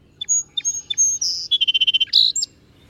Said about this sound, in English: Some of the birds that I've seen there are song sparrows that are living in my grandmother's backyard. I see them every summer.